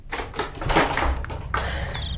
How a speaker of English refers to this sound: Shifting some parcels under her arm, she slowly forced round her latch key in an unwilling lock, then gave the door, which had warped, a push with her knee.